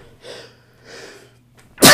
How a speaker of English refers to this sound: excuse me, I'm about to sneeze, I think.